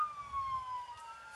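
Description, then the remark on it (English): A police siren wails steadily with a slowly falling tone, fairly loud, over the low rumble of a moving police car's engine and road noise, recorded on dash cam while chasing a car slowly through a residential neighborhood. “So this is dash cam. They're trying to chase a car.”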